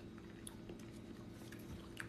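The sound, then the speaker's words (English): Soft, wet chewing of papaya, steady mouth sounds with a few brief squishy clicks, fairly quiet throughout with no talking. “No, this papaya, it's definitely one of the best ones I've had in a long time.”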